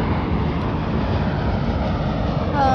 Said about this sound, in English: Oh, yeah. Sorry about that. There was an airplane.